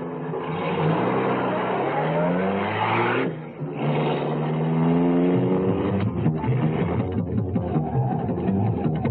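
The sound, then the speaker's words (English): A car engine roars and revs hard as the vehicle speeds away, its pitch climbing with acceleration while tires squeal, loud throughout with no talking. “We may have to fly this thing.”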